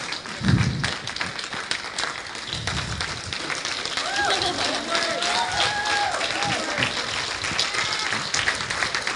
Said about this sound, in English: Yeah, come on, stand up. Give her a good round of applause.